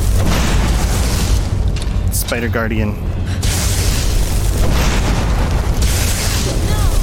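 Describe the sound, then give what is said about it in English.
A fireball spell explodes in a video game with a loud, sustained roaring blast that rumbles throughout, as the companion character Lydia walks in front of it, while a voice briefly speaks over the din midway. “Lydia, you walked in front of my fireball!”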